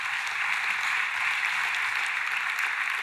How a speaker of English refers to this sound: yeah, we should clap for that. It's a good thing.